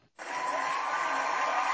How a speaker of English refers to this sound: George has brought his own applause section. Right? I got my own sound effects now. We're getting fancy.